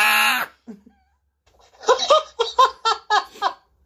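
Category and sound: human body sound, person screaming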